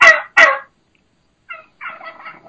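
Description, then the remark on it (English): Two loud, sharp, high-pitched wild turkey hen yelps in quick succession, followed after a pause by a softer, raspier run of clucking calls, with no talking. “There's the high pitch.”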